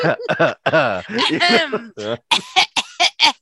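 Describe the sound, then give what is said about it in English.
A person clears their throat in a loud, drawn-out series of voiced, gravelly rasps that end in several short, choppy bursts, with no words spoken. “Let me clear my throat.”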